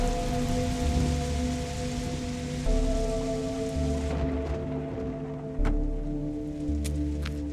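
Steady rain falls throughout with a dense hiss, occasional sharper drips and splashes standing out, while a low sustained humming tone lingers underneath. No one speaks.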